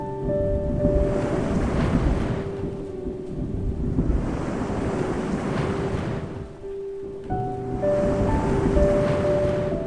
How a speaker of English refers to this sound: Unable to sleep during storms, he watched the waves crash like a chaotic symphony.